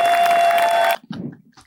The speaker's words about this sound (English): In the applause of my many fans. Let it make me feel good about myself. Thank you, everyone.